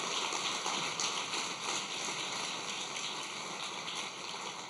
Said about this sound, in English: If you're going to give it a round of applause, give a round of applause for God. Okay? Not for me, but for God.